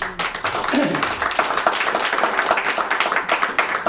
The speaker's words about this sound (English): Now, if you really believe it, give him a hand clap.